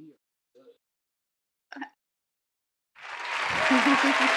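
After a few short bursts of voice, an audience breaks into loud, dense applause that builds and holds for the final second and a half, with a brief vocal cheer riding over the clapping.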